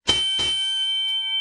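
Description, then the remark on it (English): Two quick metallic bell strikes close together, followed by a bright, sustained ringing tone that lingers steadily without fading much. Fairly loud, no voices. “And ring the bell.”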